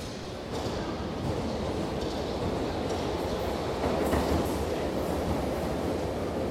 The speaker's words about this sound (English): There, she left on the train.